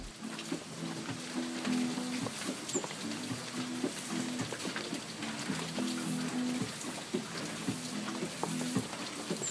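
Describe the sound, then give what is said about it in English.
Steady rain patters down in a dense, hissing wash at a hostel in the jungle, with faint low repeating guitar notes, played by people next door, drifting underneath throughout; no one speaks. “And next door, these French people, were playing guitar, and it was raining.”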